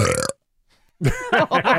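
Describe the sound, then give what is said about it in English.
A loud burp opens, then a short silence, then a longer, croaky belch that rises and falls in a few gurgling pulses. No speech. “All right, belch number two.”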